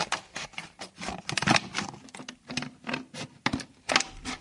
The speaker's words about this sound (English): OK, I'm just poking the scissors through. And just cutting through.